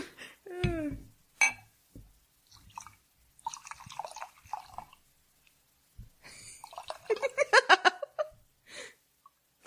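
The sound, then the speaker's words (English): Scotch glugs out of a bottle into a glass in bursts of rapid, bubbling gurgles that rise in pitch, broken by a few sharp clinks and quiet pauses. “Our new intro is just going to be pouring scotch from now on.”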